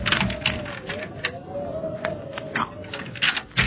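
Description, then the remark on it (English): A key rattles and clicks in a door lock, a short run of metallic scrapes and taps, with a faint whistling wind tone drifting underneath. “Oh, here we are. This key fits.”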